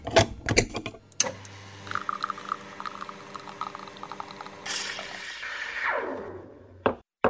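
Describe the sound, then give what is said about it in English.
An espresso machine brewing: a few sharp clicks, then a steady buzzing pump drone, followed by a louder hissing, gurgling rush that tapers off before a final click. No one speaks. “And with that, let's head over to my espresso machine so I can brew up another leadership espresso shot.”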